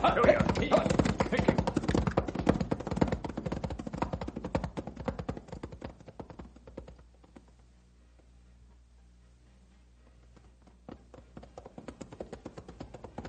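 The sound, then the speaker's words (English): Horses' hooves, including pack horses, clip-clop in a quick, busy patter that gradually thins out, leaving a low steady rumble before scattered hoofbeats return near the end. “Don't let the pack horses drag”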